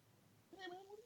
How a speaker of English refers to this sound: I'm sorry, I'm talking to the cat. The cat got crazy all of a sudden.